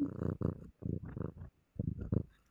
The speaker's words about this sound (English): Nella's purring into the microphone. I'll keep that in. That was like some ASMR all of a sudden.